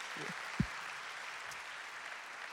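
An audience at a morning church service claps steadily, a dense wash of many hands sustained evenly throughout, with a brief low thump early on and no voices.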